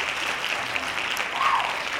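Steady applause from a group of people clapping, a dense, continuous patter of hand claps at an even loudness for two seconds, with no voices rising above it.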